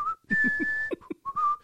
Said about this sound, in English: And just sort of absentmindedly to myself, I was inspired to start whistling the music.